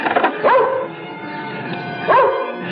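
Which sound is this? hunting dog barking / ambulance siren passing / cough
hunting dog barking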